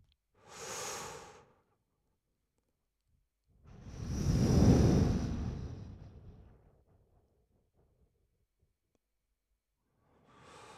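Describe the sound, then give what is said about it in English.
Ujjayi breathing (ocean breath), made audible to imitate ocean waves: a short hissing inhale, then a longer, louder, rushing exhale that swells and fades like surf, and another breath begins at the end. No talking. “So if you're alone, you can simulate the sound of waves with the breath.”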